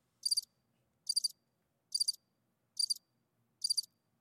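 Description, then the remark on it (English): A cricket chirps five times at a steady, even pace, each chirp a quick high-pitched trill, clear against an otherwise quiet night with no voices. “Fucking crickets allowed tonight, man.”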